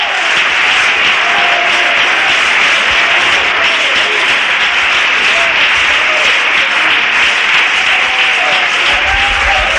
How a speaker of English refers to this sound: Give them a good round of applause tonight.